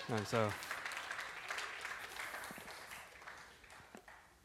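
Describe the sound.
An audience at Sojourn Heights church breaks into steady applause, a dense patter of many hands clapping for several seconds and tapering slightly toward the end, with a brief voice heard at the very start.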